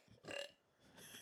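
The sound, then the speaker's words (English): A short, high-pitched burp comes out in two quick squeaky bursts, fairly quiet, with no talking around it. “He's high pitched burp.”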